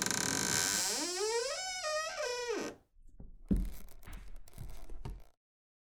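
A long, creaking tonal squeal gives way to several irregular, gritty scrapes and thuds of a man digging in soil, uneven in rhythm, with no voices.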